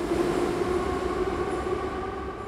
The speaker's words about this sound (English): But now the metro trains are running again. Commuters and families dart in and out of the aging rail cars.